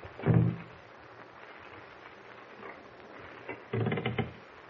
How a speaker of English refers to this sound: Someone at the door. Shh. He's trying to open it.